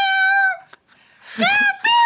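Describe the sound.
A voice sings the Christmas tune Stille Nacht in drawn-out meows, one held note, a brief pause, then two rising, bending notes, fairly loud with no other sounds.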